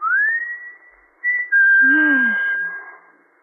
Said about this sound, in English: When he used to roll to the bottom of the hill and wait for you, and you could stand in the orchard until you heard him whistle.